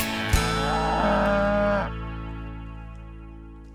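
A single drawn-out cow moo, loud, lasting about a second and a half before cutting off, with a steady low hum carrying on underneath afterward.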